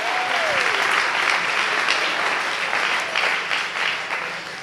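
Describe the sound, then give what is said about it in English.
A crowd applauds steadily throughout, a dense, sustained wash of many hands clapping at once, loud, with a brief whistle-like tone near the start and no talking. “Let's just clap.”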